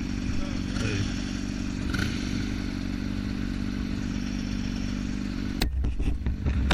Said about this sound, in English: He stopped at a red light. Yeah. He's revving his engine. Is he wearing a GoPro? Yeah. So it's a motorcycle cop.